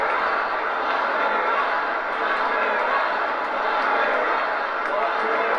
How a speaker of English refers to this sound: We're going to be talking about Trump marathon, longest speech of a presidency, and the crowd, well, the crowd erupts and they chant, "Lock her up."